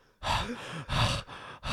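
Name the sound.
imitated heavy labored breathing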